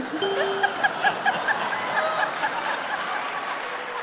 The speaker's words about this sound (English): you don't have to applaud that, for God's sake.